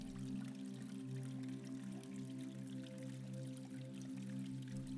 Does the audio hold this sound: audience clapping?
no